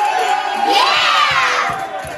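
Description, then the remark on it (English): Mariners baseball team members in their locker room in Texas jump out of their seats, surround a teammate named an All-Star and jump up and down. They erupt in loud, excited cheering and shouting, many overlapping voices whooping at once in a sustained burst of celebration, with some thumping underneath. “Okay, but so I love that this video went viral because all the Mariners jump out of their seats and surround him and start cheering him and jumping up and down.”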